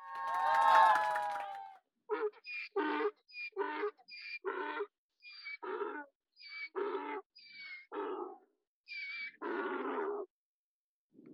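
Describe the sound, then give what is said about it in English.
A donkey brays loudly, opening with a long harsh hee-haw and then breaking into a rapid series of rhythmic, wheezing hee-haw pulses that fade into a final gasp. “The hee-hawing of a donkey.”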